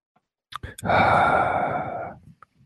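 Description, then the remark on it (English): A heavy, breathy exhale into the microphone, loud, rising quickly and trailing off over about a second and a half, with a couple of short breaths around it. No speech. “Stop breathing in the microphone.”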